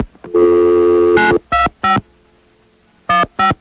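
Telephone keypad dialing tones: a long steady electronic tone, then four short, loud beeps in two pairs separated by a pause, with no voices.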